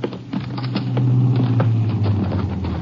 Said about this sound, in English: And there's a car coming now